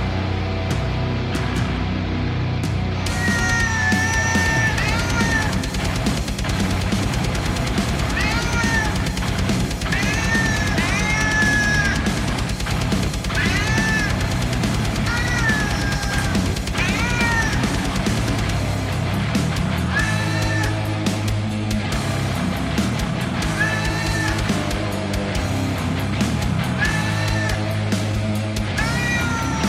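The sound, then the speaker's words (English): A loud, dense metal track with driving drums and distorted guitars, while repeated cat meows and yowls take the place of vocals, sliding and wavering over the music throughout. “there's a metal band, and it was all, and all the vocals were done by a cat, which you will drop in right about here.”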